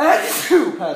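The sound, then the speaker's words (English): A sudden sneeze bursts out with a sharp breathy hiss, mixed in with people talking over it. “Bless you.”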